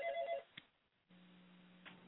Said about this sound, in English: I hear a telephone ringing, so I was going to pick it up.